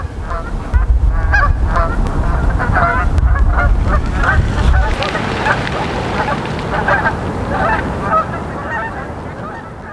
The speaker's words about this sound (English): We all hear the unpleasant calls of seagulls, so we flap our wings quickly on the lake, fly toward the sky.